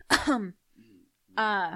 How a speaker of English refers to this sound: That was a weird cough.